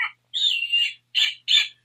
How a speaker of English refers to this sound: And what kind of owl is that? It's a snowy owl. It's a snowy owl. Well, yeah, of course, it's very white.